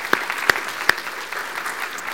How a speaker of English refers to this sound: In fact, some of them have already heading out to children's church, but how about a word of applause of how our children's ministry has served us this day?